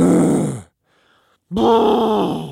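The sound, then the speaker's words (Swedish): A voice imitates the strained grunting of people coming into a gym locker room after working out, two loud, drawn-out low groans separated by a brief pause, each rough and throaty like someone exhaling hard after heavy lifting. “Det här att folk kommer in i omklädningsrummet och så bara...”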